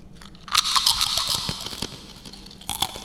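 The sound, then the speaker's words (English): Someone crunches potato chips, a string of loud, crackly bites and chews in quick irregular bursts, with a short pause before a final flurry of crunching. No one speaks. “are you enjoying your chips?”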